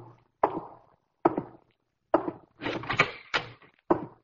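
A door is worked open as someone comes in, with a series of sharp wooden clunks and a rattling of the latch in the middle, moderately loud, with brief silences between the knocks and no voices.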